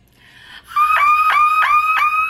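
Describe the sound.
A voice imitates a car alarm with a loud, high, steady wailing tone broken by four quick rhythmic dips, like a repeating siren cycle, with no talking.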